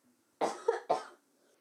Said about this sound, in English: Sorry, I'm coughing again. Oh, my God.